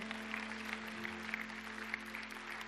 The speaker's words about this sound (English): Let's clap our hands one more time today.